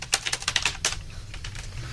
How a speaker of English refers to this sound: A lot of typing noise. That's very good. Lots of reverb. Click, click, click.